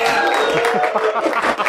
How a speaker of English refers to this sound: Thank you for that premature smattering of applause that was happening.